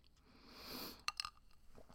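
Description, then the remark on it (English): A quiet slurp through a straw from a cup of water in palm juice with ice, a soft airy rush that swells and fades, followed by a few quick bright clinks of ice in the cup. “I'm going to take a sip.”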